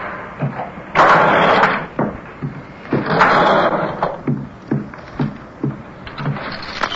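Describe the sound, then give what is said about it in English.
Loud scraping and bumping as a door is shut and barricaded, with heavy objects dragged and shoved against it in two long grinding pushes and a string of dull thuds. “They'll have to break the door down to get me out.”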